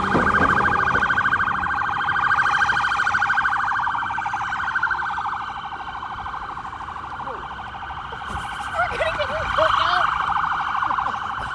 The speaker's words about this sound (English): Oh, here comes the ambulance is coming in hot.